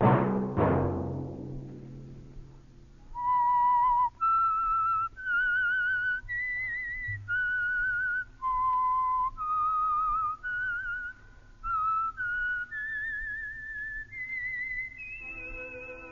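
The whistled signature tune of the Signal Oil radio program The Whistler: a lone melodic whistle plays a slow, eerie tune of sustained notes that step up and down, clear, over a low humming drone after a brief opening thump.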